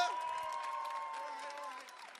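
An audience claps and cheers steadily for a couple of seconds to judge a contestant's performance in a rap battle, a dense wash of applause with mid-pitched whoops and shouts mixed in, fading slightly at the end.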